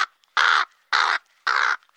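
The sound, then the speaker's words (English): Someone imitates a crow, letting out three harsh, raspy caws in a steady rhythm, each about a third of a second long with short pauses between, loud. “You made a crow noise.”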